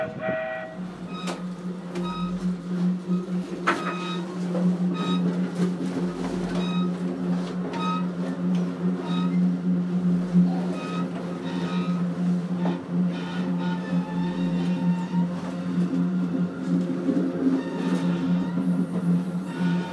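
A steady, droning rumble of a train rolling along the rails, heard from inside a carriage while travelling west into Utah and Nevada in the western U.S., with a constant low hum and occasional sharp clacks and rattles. No one speaks.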